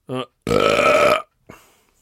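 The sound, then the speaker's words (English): A long, loud, rumbling burp sits between a short voiced grunt before it and a brief breathy exhale after, with no other sounds around. “I feel a burp coming.”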